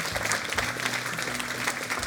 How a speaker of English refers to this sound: Man, give God a hand clap of praise in this place. Come on, church.